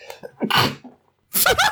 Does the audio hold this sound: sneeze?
yes